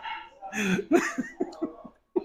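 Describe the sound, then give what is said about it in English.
A short, fairly high-pitched burp bursts out on command after a big drink, aimed at another person as a game challenge, followed by several quick, breathy pulses like soft chuckles, with a brief final puff after a pause. “Isn't that such a girly burp?”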